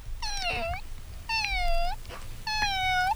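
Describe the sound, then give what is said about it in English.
A voice imitates a cat meowing three times in a row, each drawn-out, tonal meow fairly loud, with brief pauses between them and no other talking. “Kitty cat.”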